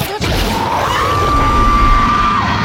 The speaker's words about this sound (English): Oh, insert … screaming again.